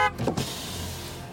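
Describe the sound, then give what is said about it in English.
A car pulls up alongside a woman walking on a busy New York street. Its engine idles with a steady low hum as an electric window whirs down, with no talking. “Linda was walking along a busy New York when a car pulled up alongside her.”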